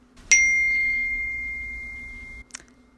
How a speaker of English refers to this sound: The hell was that? It was my iMessage beeping on my computer. Oh, why was it so loud? I don't know. I don't know how to turn it off.